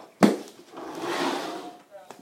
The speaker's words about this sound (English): But with a chair, unless it's, like, bolted to the ground, you could flip, land, and it'll, like, slide like this.